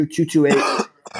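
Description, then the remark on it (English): A quick series of rough coughs, three short bursts followed by a longer throaty one that trails into a voiced clearing of the throat, then a brief pause. “don't forget to use that cough button.”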